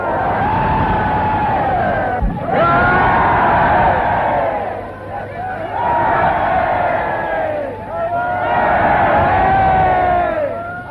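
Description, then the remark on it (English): A large crowd cheers and shouts in loud, surging waves as people fight to get near the Premier's car, in a BBC recording. The roar swells and dips in repeated bursts with many voices yelling together, continuous throughout. “There was no sign of British reserve as the crowds fought to get near the Premier's car.”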